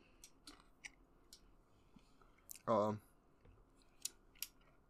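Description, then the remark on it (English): Someone chewing food, with scattered crisp, crunchy clicks at an irregular pace, broken once midway by a brief voiced murmur. “Sorry, I just finished chewing.”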